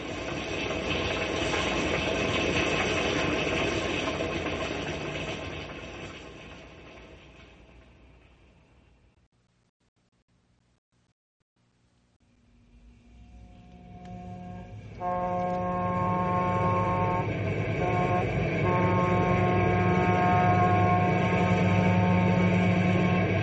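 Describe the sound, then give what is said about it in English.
A train engine roars along the rails, loud and steady, fades almost to silence midway, then returns even louder with a droning mechanical hum and rushing hiss. “Those engines powerful.”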